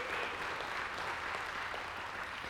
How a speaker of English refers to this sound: If you appreciate David's service in the Wild Game Dinner, you just give him an appreciation clap. Amen.